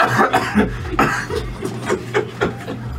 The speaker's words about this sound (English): Now, when you tell you're going to stay, or you hear the cough in the back.